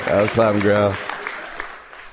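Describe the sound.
A voice calls out briefly, followed by a patter of audience clapping, a steady, moderately loud spread of many hands that thins out toward the end.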